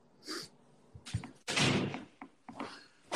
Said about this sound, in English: I'm shutting the door real quick.